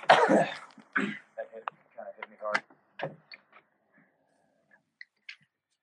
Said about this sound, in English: I'm taking full advantage of the fact that my parents aren't home, so, you know, if I have to cough right now, it's nice. The time to do it.